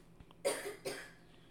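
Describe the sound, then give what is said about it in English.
Two harsh, open-mouthed coughs in quick succession from a sick person in an office, fairly loud, with a brief pause between them and no talking. “Open mouth cough, just right all in my office.”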